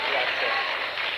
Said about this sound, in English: We have his son here. Now, give his son a clap. Come on.